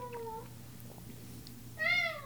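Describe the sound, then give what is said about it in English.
A cat meows twice: a softer, drawn-out mew at the start, then a louder, higher meow near the end, over a low, steady background hum. “My cat is so rude.”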